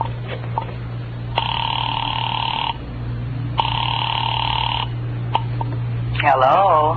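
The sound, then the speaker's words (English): After a number is dialed on a phone, two long, steady ring tones purr down the telephone line, evenly spaced with a pause between, over a constant low electrical hum; a voice briefly begins right at the end. “I dialed Bradshaw 7711 and waited.”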